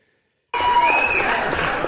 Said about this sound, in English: But it seems weird that the AI has created itself a very long round of applause.